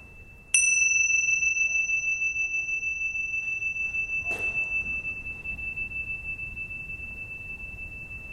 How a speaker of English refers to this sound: What I'll do is begin and end the meditation with a bell in the traditional way.